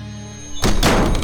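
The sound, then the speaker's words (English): A bedroom door slams shut as an icy gust rips through the room, with one heavy, loud thud and a short rattling follow-through, breaking a quiet, steady low hum. “My bedroom door slammed shut as an icy gust ripped through the room.”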